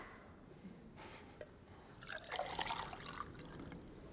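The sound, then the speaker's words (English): Water trickles and splashes as it is poured, starting with a brief hiss and then a busier, bubbling stream that runs steadily for a couple of seconds, fairly quiet overall. “So this water, this is just water.”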